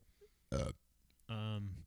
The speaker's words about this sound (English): Burping a lot over here.